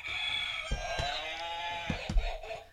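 A novelty trivia answer buzzer, used during a trivia game, lets out a long, squawking, rooster-like honk with a bright, harmonic tone, punctuated by several sharp clicks or taps as the button is pressed.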